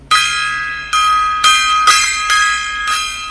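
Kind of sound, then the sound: signal or alarm, gong struck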